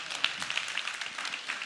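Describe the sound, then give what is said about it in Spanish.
Light, polite applause from an audience, a soft scattered patter of many hands clapping at a steady low level for a couple of seconds, with no voices over it. “Ese aplauso fue de golf. Usted sabe cómo son los aplausos de golf, ¿verdad?”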